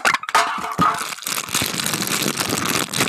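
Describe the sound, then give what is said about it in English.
Crisp crinkling of a thin aluminum Sprite soda can, a steady run of sharp crackles and pops filling three seconds with no talking over it. “We'll go ahead with the Sprite can.”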